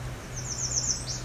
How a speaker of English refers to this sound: It was one of the faster songs of the American Redstart.